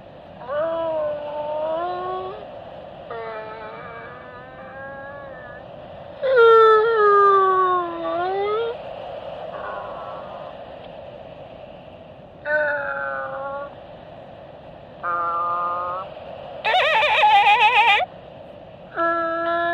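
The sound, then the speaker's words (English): An imitation of whale song: a run of drawn-out, moaning wails with sliding pitch, about eight phrases separated by brief pauses, fairly loud, with no talking. “And Wayface scientists have assured me that the noise is far more relaxing than actual whale song.”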